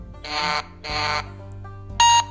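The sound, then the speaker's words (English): A telephone ringing tone from an outgoing phone call sounds in three buzzy bursts, each a bright, harsh electronic trill lasting about a third of a second, with short gaps between them and a steady low hum underneath. “Okay, she's ringing.”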